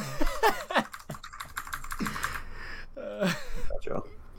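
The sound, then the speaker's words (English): Rapid clicky keystrokes from a mechanical keyboard rattle along in uneven bursts while someone talks over them in the foreground. “The people that hate clicky keyboards probably hate this cast right now.”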